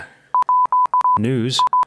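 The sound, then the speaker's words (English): A phone text message alert tone: a quick run of identical high electronic beeps in a steady rhythm, briefly broken midway by a short burst of voice before the beeping resumes, clear. “News alert, just coming in via my phone text message.”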